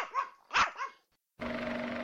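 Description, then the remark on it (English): Several high-pitched puppy barks and yips in quick succession, fairly loud, then a short pause before a steady hum with a buzzing tone takes over. “That one, puppies?”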